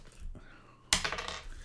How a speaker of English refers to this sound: So roll the six-sided dice again.